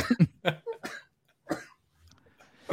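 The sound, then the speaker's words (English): A fairly loud fit of coughing brought on by laughing: several sharp bursts in quick succession, a brief pause, then a few more harsh coughs, with no talking. “I can't laugh without coughing.”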